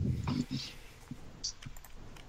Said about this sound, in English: So at this point, you're all probably hearing a clicking sound. Mm-hmm. As I've picked up one of the guns off the table and am messing with it. One of the ones that was taken off the bodies. Okay. And I sort of point it at a wall and pull the trigger